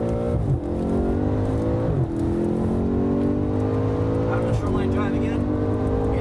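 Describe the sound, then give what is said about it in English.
A car engine screams at high revs on the Long Beach street course at about 145 miles an hour, its pitch climbing steadily and dropping briefly with each quick gear change, loud throughout, with a voice talking over the roar. “In this car, it's fast, 145 miles an hour.”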